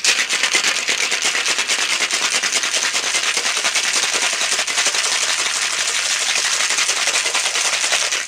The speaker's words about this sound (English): Yep, the crushed ice is going to go in the glass after I shake it. I'm shaking with whole cube ice right now.